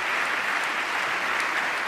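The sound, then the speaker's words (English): Steady applause from an audience, a dense, continuous patter of many hands clapping at an even, fairly loud level throughout, with no voices standing out. “So now you got a guy standing up there applauding him.”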